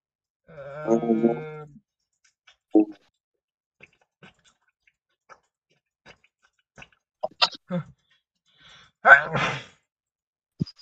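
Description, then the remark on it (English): A single sharp sneeze bursts out near the end, following a short voiced breathy sound at the start and scattered small clicks and taps amid otherwise quiet. “Bless you.”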